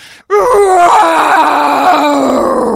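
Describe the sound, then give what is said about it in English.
A loud, drawn-out scream of pain erupts after a brief pause and holds for over two seconds, raw and strained, sagging slightly in pitch toward the end. “Beatrice screamed in pain.”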